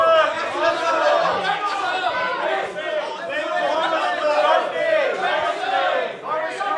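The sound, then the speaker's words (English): A live audience shouts out names of towns in England all at once, suggesting a team to play in Football Manager, many voices overlapping in a loud, continuous jumble of calls with no single voice standing out. “There's going to be people shouting out towns in England.”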